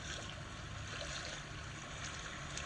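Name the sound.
water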